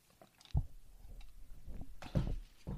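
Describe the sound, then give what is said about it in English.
Someone sips water, with a few soft wet slurps and swallowing sounds spread over a couple of seconds, fairly quiet with faint clicks and no talking. “I'm going to take a sip of my water first.”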